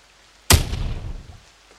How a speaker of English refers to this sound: So he fires the pistol and it slams into the shoulder of one of the guards, who gets blown back and hits his head on the side of a desk.